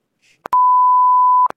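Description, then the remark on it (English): A loud censorship bleep: a steady, pure mid-high tone held for about a second, framed by short clicks, with a second bleep cutting in right at the end. “That's a quote from a TV show, so you don't have to bleep that out.”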